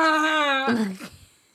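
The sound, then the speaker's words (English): A person imitates a whale call: a loud, sustained moaning tone that wavers slightly, then breaks into a lower, sliding groan that fades out after about a second and a half. “Are you calling whales?”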